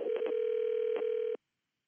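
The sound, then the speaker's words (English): A steady, mid-pitched telephone tone hums for over a second as a call is placed to the Stone Trust, a group in Vermont, broken by a few quick clicks like keys being pressed, then cuts off abruptly into silence. No one speaks. “So we called them up.”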